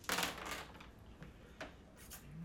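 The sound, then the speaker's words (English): Dice rattle and tumble across a tabletop in a quick burst of clatter, followed by a couple of lighter clicks as they settle on a roll of three, fairly quiet. “Three. That's not a common roll that we're getting.”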